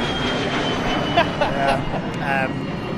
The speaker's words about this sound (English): There's a plane.